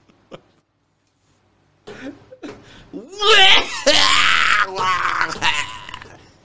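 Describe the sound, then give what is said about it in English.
A short sharp cough, then a string of loud, harsh, raspy coughs and throat-clearing bursts building into a strained coughing fit with groaning vocal sounds. “Would you rather be get into a sneeze fit or a coughing fit?”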